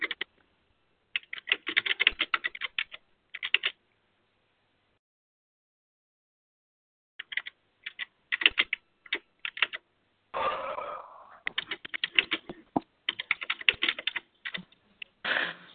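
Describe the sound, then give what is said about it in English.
Rapid keystrokes clatter on a computer keyboard in uneven bursts, pausing for several seconds of silence before resuming, clear with no voices. “What are you typing?”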